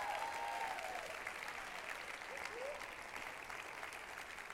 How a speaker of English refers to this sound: Let's give all these guys a round of applause.